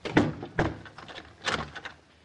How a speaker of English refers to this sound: Oh, wait a second. What's the matter? I want to make sure this front door is locked. For 20 years, you've been going back to make sure the front door was locked. Yes, sir, and this time it wasn't.